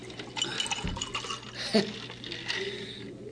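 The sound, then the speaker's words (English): Water pours into a glass, a steady splashing trickle with a few brief clinks, running for a few seconds at moderate volume over a low background hum. “Now it's my turn to pour water.”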